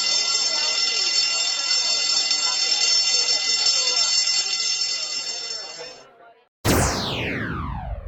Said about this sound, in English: Bell rings. Class ends.